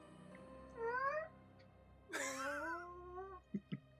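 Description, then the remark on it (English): A voice imitates a door creaking open with two drawn-out, wavering, gliding tones that sound almost like a cat's meow, the second longer and louder, followed by two quick soft knocks. “And then in the second part I was just like, is that a door opening? And then I was like, wait, no, that's a cat.”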